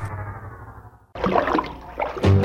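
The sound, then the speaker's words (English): A sustained, slightly falling tone gives way to loud water splashing in choppy bursts, like someone sloshing around while taking a bath in a tub, with a heavier splash near the end. “…, I was taking a bath, long about a Saturday night.”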